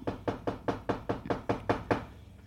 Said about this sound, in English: The night before the family returned to the home, Vic and Peggy Nottingham were awoken at 2 a.m. by a violent outburst of knocking coming from the Hodgson's home, which was completely empty at the time.